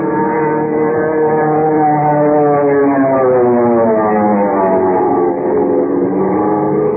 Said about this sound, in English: Without warning, it went into a power dive, hurtling down on Kent, Jimmy, and the commissioner like some giant bullet, motor roaring, wind screaming through the strut.